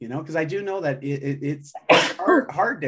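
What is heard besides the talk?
sneeze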